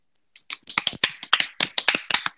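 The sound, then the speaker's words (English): A short burst of hand clapping, roughly a dozen quick, sharp claps in a fast uneven rhythm, fairly loud with no talking. “Let's clap that up.”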